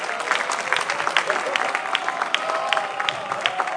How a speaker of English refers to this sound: Please give a round of applause to my husband.